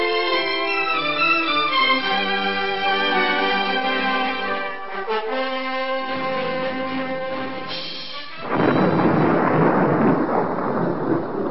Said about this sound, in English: Looks like we're in for a bad storm. You can say that again. Just look at the sky out there.